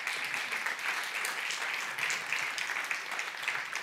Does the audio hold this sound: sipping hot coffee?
no